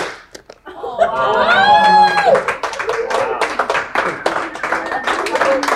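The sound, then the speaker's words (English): An audience at a magic show claps together once in one sharp burst on the count of three, then breaks into laughter, rising whoops and loose, scattered clapping that carries on to the end. “All right, so on the count of three, you're gonna clap once.”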